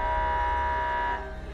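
A loud, steady electronic alarm siren at a military base in a desert, alerting soldiers to their posts, blares with a harsh, buzzing harmonic tone that holds without pause, then drops slightly in volume near the end. No voices are heard.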